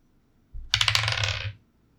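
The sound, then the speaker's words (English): Dice clatter and rattle across a hard tabletop for about a second, a quick burst of bright clicking that settles into quiet, with no voices; the dice are rolled for a perception check in a tabletop role-playing game. “The dice betrays you.”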